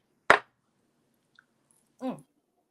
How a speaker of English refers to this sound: Yeah, we doing straight shots today. So that's clink with us. Clink. Clink.